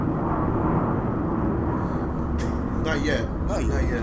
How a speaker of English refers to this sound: Rude ass fucking airplane. It's always the flight path.